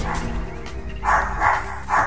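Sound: dog barking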